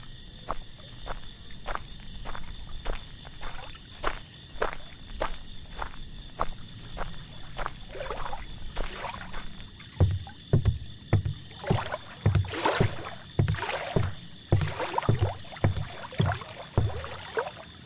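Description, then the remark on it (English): Water laps and knocks rhythmically against wooden boats at a lakeside dock, where a luxury pontoon boat is moored, with steady insect chirring in the background. The thumps grow heavier in the second half. “Feeling beautiful for the first time I could remember, I rushed back to the lake.”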